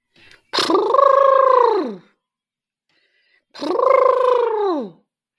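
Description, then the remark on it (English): A person imitates an elephant's trumpet with two long, brassy, buzzing voiced blasts, each about a second and a half, that swoop downward in pitch at the end and are separated by a short pause. “I had to give my elephant noise a go there.”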